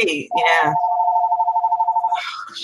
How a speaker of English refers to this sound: Wow. You sound like you're in an office. That is a very official ringtone right there.